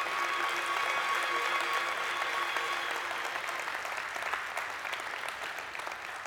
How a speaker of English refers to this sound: Come on, let's give the Lord a big hand clap. That's been good.